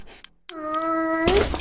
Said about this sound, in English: That beep means you are a participant in the game. And if you want to stay in the game, as well as in a solid shape, whatever you do, do not lift your foot up.